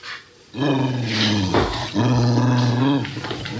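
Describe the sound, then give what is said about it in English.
A dog growls low and steadily, a continuous rumbling snarl that swells and dips over a few seconds with brief breaks between long drawn-out growls. “Please, keep that dog locked up.”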